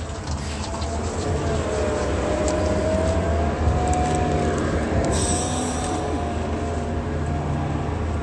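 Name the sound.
city bus arriving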